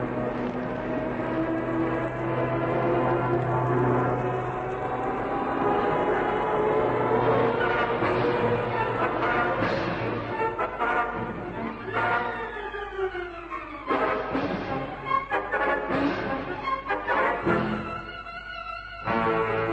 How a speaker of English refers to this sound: Michu and Haynes hold their breath as the first plane sweeps down from the sky at the patch of elephant grass.